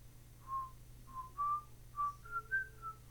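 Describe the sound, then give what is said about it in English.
Someone whistles a short tune, about eight clear notes that rise and fall in a loose melody, over a faint low hum with no talking. “Oh, I'm trying to remember what song he whistles.”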